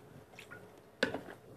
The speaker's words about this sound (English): have to take a drink. But yeah, it's water, by the way.